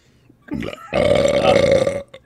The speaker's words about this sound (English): Fucking Jesus, mate, I feel better, don't worry. We're at that point where we feel comfortable enough to burp.